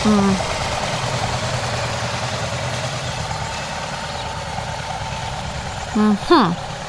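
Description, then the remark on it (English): A steady, low engine rumble from a car on a road runs throughout, with a brief voice cutting in near the end. “Oh, here comes a car.”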